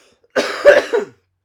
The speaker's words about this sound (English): see the girly cough again. Pathetic. Pathetic.